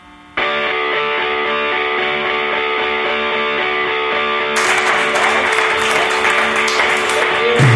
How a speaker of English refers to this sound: Hello and welcome to the Meat Improv in Munich. This is exciting for us. Yeah, go ahead, clap again. Yeah. Just clap. We'll take it all.